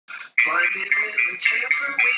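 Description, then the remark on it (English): A brief snippet of a song played through a small phone speaker, thin and tinny, with a singing voice over guitar, loud and continuous after a short opening note. “It's a little guitar.”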